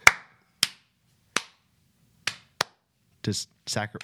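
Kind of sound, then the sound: human body sound, single hand clap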